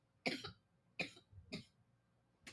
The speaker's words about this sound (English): Sorry, I have to cough.